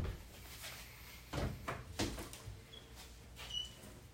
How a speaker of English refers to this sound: Hold on, someone's knocking, I think.